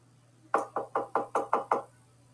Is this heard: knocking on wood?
yes